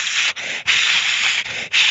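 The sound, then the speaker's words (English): A voice imitates the noise of a guitar pedal board plugged into a Deluxe Reverb amplifier with a ground problem, meant to include 60-cycle hum: a loud, steady breathy hiss broken by four brief gaps, lasting about two seconds. No distinct low hum stands out beneath it. “with a little bit of 60 cycle hum done on top.”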